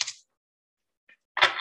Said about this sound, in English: I jinxed myself by saying this deck was easy to shuffle because now I'm having issues.